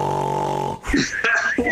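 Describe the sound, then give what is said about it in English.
A voice imitates a cartoon snore, opening with a long, raspy buzzing inhale followed by a few high, whistling exhales, loud with no other talk. “In the Gospel of Mark, they snore like cartoons”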